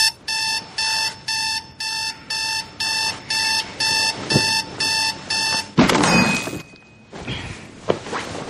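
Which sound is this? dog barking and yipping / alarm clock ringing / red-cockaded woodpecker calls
alarm clock ringing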